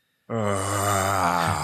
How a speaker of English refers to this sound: I just yawned.